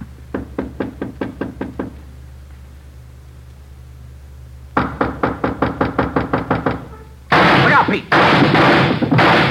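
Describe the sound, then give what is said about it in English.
Two rapid volleys of sharp, evenly spaced gunshots fired through a door, muffled, separated by a short pause, then a loud burst of harsh, noisy clatter. “Through the door. Yeah, he's got two left. Unless he's got another gun.”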